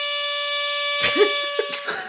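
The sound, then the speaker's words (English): A soundboard air horn blares one long, steady, buzzy tone that runs the whole time without a break, with people starting to talk over it partway through. “That air horn goes on too long.”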